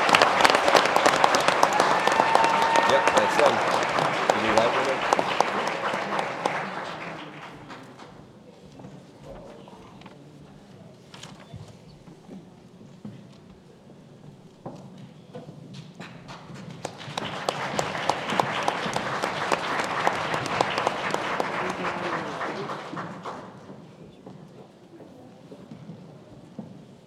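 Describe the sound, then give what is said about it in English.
An audience at a school ceremony at Indian River High School applauds the Sussex County Honors Band members in two big swells of dense clapping, with a quieter, scattered stretch in between before the second burst rises and fades out. “How about a round of applause to our Sussex County Honors Band members?”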